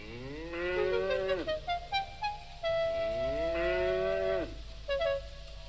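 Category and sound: animal, cow mooing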